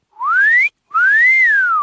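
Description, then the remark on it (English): A person whistles two loud notes with a short gap between them: the first slides upward, the second rises and then falls. No talking or other sounds accompany it. “That was a really bad whistle.”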